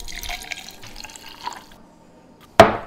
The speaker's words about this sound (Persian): در بخش تیغ ها مرلین سیب ها را، نه آن سیب های آلن تورینگ، درون دستگاه آب میوه گیری می گذاشت و آب تازه آنها را توی لیوان می ریخت.